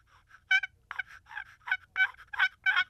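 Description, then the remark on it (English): A custom handmade turkey call, a little out of tune, is blown in a quick series of about nine raspy, gobbling yelps. The bursts are loud and reedy, with no talking over them. “broke my broke custom your custom handmade well, call”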